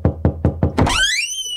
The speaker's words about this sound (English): This week I got a knock at my front door.